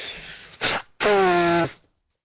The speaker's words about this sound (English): Oh, I'm getting some Kleenex. I have to blow my nose after listening to that sob story.